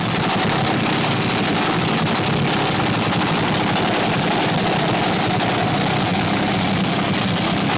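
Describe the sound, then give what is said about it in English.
A top fuel dragster engine fires up and roars steadily and loudly throughout, a dense, rumbling blast of noise with no pauses and no voices, unrelenting from start to finish. “I remember the very first time that I ever heard a top fuel dragster light off.”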